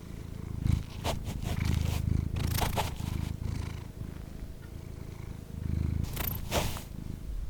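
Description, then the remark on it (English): A cat purrs steadily, a low rumbling drone pulsing with each breath, with a few soft brief clicks or rustles over it and no voices. “Like for me, what is pleasure if not listening to my cat purr?”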